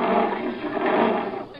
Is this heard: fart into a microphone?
no